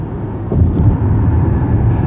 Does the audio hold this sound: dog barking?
no